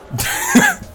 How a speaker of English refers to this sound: I'm frazzled. I'm still sneezing. Whoa. Like halfway through the sentence, I sneeze again on Kinnick.